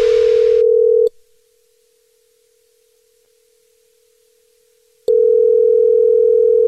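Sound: telephone dial tone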